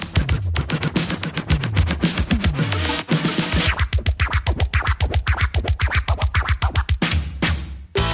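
Rapid, rhythmic turntable scratching cuts back and forth over a driving hip-hop beat, with sharp repeated bursts and sweeping pitch glides, loud and aggressive throughout with no voices.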